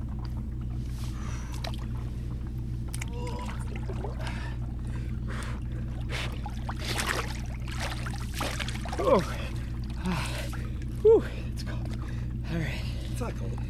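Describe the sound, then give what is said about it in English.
Water sloshes and splashes continuously as a person dunks their head into a tub filled with warm water, over a steady low hum, with a couple of sharper splashes near the end. “Let me dunk my head real quick.”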